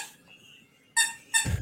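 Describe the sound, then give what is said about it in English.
Two sharp, high-pitched, loud squeaks from a dog's squeak toy, the second following quickly after the first, with a faint squeak just before them and no talking. “On that damn squeaking. I thought it was dogs cool. Love squeak toys.”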